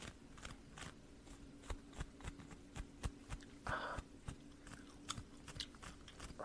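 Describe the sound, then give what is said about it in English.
A new pet gerbil named Bubba gnaws on his bowl, making faint, irregular clicks, crunches and little bumps that repeat unevenly over a steady low hum, with no one talking. “His name's Bubba, so if you hear any type of little bumps and stuff, it's just him over there. He's chewing on his bowl that I paid a lot of money for, but it's cool, as long as he's happy with his chilling.”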